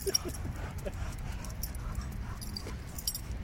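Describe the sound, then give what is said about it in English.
A dog moving and scuffling with soft panting and brief whimpery yips over a steady rustling background. “You bastard dog.”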